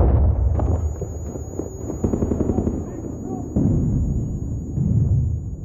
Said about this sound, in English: There was gunfire, hot projectiles, you know, penetrating the walls. The walls were being ripped apart. The Marines were pulling pins on grenades and throwing them into the other rooms, and the explosions were deafening.